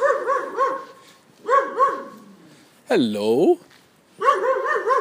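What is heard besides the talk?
dog barking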